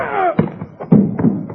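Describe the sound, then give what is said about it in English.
A blow to a man's head: a brief falling moan, then a run of dull, heavy thuds landing at uneven intervals, loud and punchy with no talk over them. “I hope I cracked his thick skull.”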